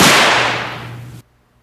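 A single loud firework bang with a sharp crack, followed by a hissing, crackling tail that fades over about a second before cutting off abruptly. No voices are heard.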